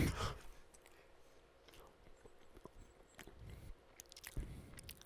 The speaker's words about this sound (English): I hate that they had to listen to you just chew for like 10 seconds.